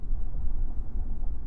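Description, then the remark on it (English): A truck rolls over a Class C gravel dirt road, its low rumbling road noise steady and continuous with a gritty crunch, heard from inside the vehicle with no talking. “It's probably thinking, we're on a dirt road now, you guys, so. Yeah, we're it's a, what, Class C gravel road?”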